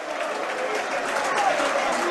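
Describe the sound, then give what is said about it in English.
Millwall football fans at The Den roar at full time with a dense wash of clapping and jeering voices, a mixture of abuse for the players and claps, steady and loud throughout with no single voice standing out. “A mixture of abuse for the players and claps.”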